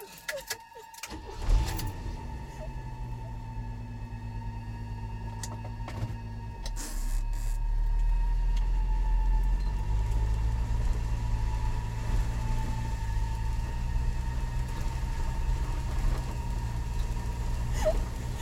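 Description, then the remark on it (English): A four-wheel-drive car engine cranks briefly and catches, then settles into a steady low, humming rumble that swells louder and heavier partway through and keeps running to the end. “Thank God for the four-wheel drive.”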